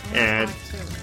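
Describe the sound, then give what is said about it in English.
A woman pours wine briefly into a glass, a short gurgling stream with a rising ringing tone, while a voice murmurs in the background. “You can hear her pouring her wine.”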